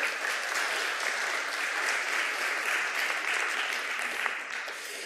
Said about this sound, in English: Here comes the kids. Give them a round of applause, folks. Good to have you kids here.